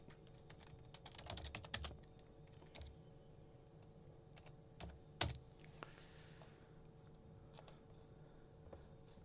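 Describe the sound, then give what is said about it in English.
Someone types on a computer keyboard, irregular bursts of clacking keys with a dense flurry early on and scattered single taps after, over a faint steady electrical hum. “I completely buggered up my keyboard with the search.”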